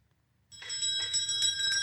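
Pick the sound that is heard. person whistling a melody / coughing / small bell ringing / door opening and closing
small bell ringing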